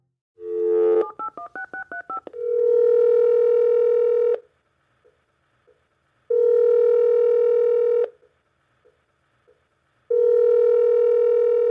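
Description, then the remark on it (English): A phone number is dialed in a quick run of keypad beeps, then a steady ringback tone rings three times, each about two seconds long with pauses between, clear; the call to a man goes unanswered to voicemail. “This is …, or it would be if I had the opportunity to pick up the phone.”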